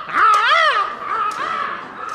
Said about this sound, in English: Noah released a raven to go and search for some dry land. Off went the raven.